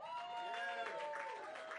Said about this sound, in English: Give a hand clap. Give a hand clap for the Seattle Drum School, too.